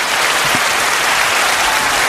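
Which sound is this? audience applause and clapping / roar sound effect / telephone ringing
audience applause and clapping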